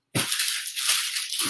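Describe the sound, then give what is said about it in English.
A box is set down with a soft, low thud, followed by a second of steady rattling and scraping as its contents shift, then another dull bump at the end. “I'm going to put this box down here as well.”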